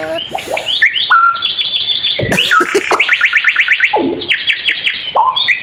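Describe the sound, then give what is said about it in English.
A bird sings a rapid, busy song of chirps, whistles and fast rising-falling sweeps that sound uncannily like a DJ scratching records, loud with no talking. “That's someone scratching. That's the scratch bird. The scratcher bird.”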